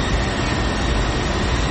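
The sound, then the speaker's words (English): A steady, loud airplane cabin roar during landing in San Angelo, Texas, a dense continuous rumble with hiss above it and no voices, holding constant from start to finish. “our flight attendants be seated at this time. We're landing in about 1 minute.”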